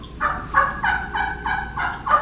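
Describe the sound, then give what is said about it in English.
A turkey call yelp series of about seven evenly paced notes, each sliding from a higher pitch down to a lower one, clear with no talking. “And y'all listen to this yelp. You're going to hear a high, and it's going to slur to a low.”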